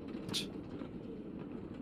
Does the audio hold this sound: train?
yes